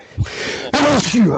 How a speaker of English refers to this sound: I had to sneeze.